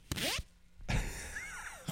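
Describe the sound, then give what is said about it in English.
A jacket pocket zipper zipped up close to the microphone: a quick rasping stroke, a brief pause, then a longer drawn-out zip, with another pull just starting at the end. No voices. “I'll do it for the microphone here. Get a good zip sound.”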